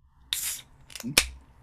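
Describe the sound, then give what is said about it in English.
A can of 5 ABV West Coast IPA beer cracks open: a sharp metallic click and a burst of fizzy hiss, followed by a second quick snap, with no voices in between. “Here comes the can.”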